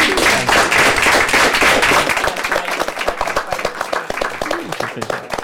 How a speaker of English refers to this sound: Okay, so we're coming to the end of our allotted time. Shall we give ourselves a clap?